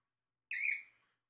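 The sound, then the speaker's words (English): A single bird call rings out, one clear, slightly descending whistled note lasting about half a second, heard alone against near silence. “On my microphone, it doesn't look like you can hear the bird, but I can hear the bird very loudly.”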